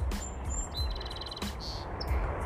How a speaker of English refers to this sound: Oh, maybe that is him. That's the other sound. The red-winged blackbird. They are everywhere.